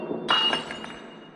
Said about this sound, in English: He goes back to the table, and he sits down, has a little drink out of a beautiful crystal glass, eats a little longer, and then he reaches for the glass again and knocks it off the table.